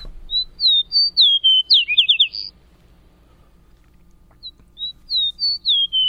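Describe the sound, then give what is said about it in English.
A clear songbird sings a bright, high phrase of rising and falling whistled notes ending in a quick trill, pauses about two seconds, then repeats the phrase against a quiet background. “There's a song of our mystery bird, and it is a beautiful one, is it not?”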